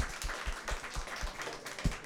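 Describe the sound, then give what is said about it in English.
A short burst of hands clapping, a soft, dense patter of overlapping claps from a few people, steady throughout and fairly quiet, with no one speaking. “Let's clap for you.”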